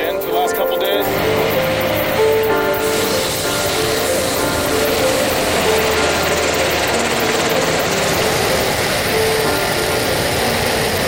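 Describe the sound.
A helicopter flying over a wildfire roars steadily, its engine and rotor drone loud and constant throughout, with faint, indistinct voices mixed into the noise.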